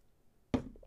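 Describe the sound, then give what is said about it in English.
Someone drinking water: after a brief hush, one sudden wet gulp sounds, followed by a couple of softer, smaller swallowing noises. No one speaks. “But what happens now, hold on, I'm just gonna have a drink of water.”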